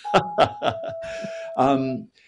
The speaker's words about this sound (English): the doorbell has rung just in time to save me from this question.